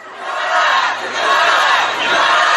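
A large crowd at a protest march in South Korea over the Itaewon disaster shouts a Korean slogan in unison, a loud, dense roar of many voices rising and surging in two sustained waves with a brief dip between them.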